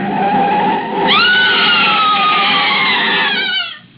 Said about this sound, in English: I stood stunned with horror, her scream ringing through my head. And the picture of her in the car, swerving off into space, into the canyon below.